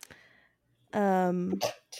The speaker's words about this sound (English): Sorry, sneezed. Bless you.